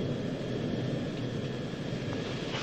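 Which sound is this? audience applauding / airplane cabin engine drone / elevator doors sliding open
airplane cabin engine drone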